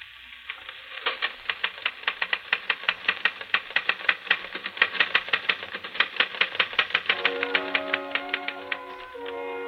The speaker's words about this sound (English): you're busy typing on a phonograph record. You watch it repeat a couple of times, satisfy yourself it's working perfectly